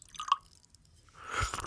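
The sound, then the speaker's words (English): A single drip, then after a short pause a steady splash of liquid pouring into a cup, fairly quiet, with no voices. “Let me pour you a cup of hot jazz.”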